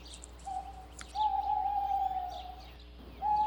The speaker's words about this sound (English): Abby was delighted to hear the voice of her owl.